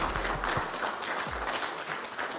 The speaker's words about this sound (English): All right. So we applaud? I think so.